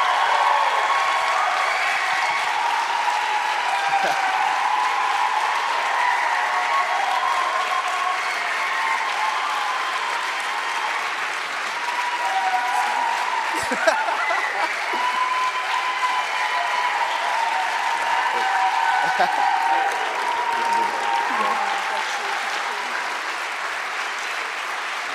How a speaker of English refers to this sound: And I would love it if everyone here would give the biggest cheer and the biggest thank you